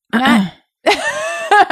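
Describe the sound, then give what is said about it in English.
A loud throat clearing right into the microphone: a short gravelly burst, a brief pause, then a longer, rougher voiced rumble that rises at the end. “I'm just going to clear my throat into the mic because I think that sounds good and it's soothing.”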